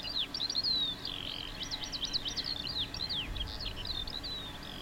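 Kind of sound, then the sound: bird, birds chirping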